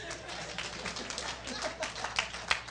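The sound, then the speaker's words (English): Audience applause: a steady wash of many hands clapping together for a few seconds, dense and even, with a few sharper claps standing out near the end. “Applause here.”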